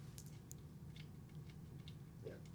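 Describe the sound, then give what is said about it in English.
Faint, irregular scratchy clicks of gnawing, like rats chewing inside a wall, come through muffled over a steady low hum, with no voices. “I'm Australian, and I know rats chewing in a crawl space.”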